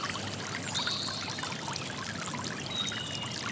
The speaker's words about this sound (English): You can hear birds singing as the stream rushes by.